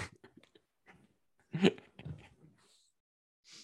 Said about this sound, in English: Yeah, I'm sorry, I may as well put a small dog barking, and that's about the right input.